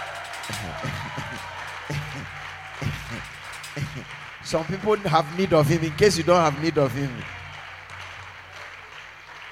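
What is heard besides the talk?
audience clapping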